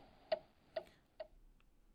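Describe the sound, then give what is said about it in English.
A quiz countdown clock ticks steadily, three crisp, evenly spaced ticks about half a second apart, then a fainter fourth, with nothing else sounding and no voices. “The clock is out of order.”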